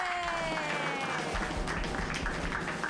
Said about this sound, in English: Everybody clap. clap wildly.